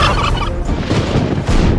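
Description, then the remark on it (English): Loud turkey gobbling fills the whole stretch, a rapid rattling burble repeating in quick bursts with no pause, harsh and busy over a noisy background. “And now, the turkeys are fighting mad.”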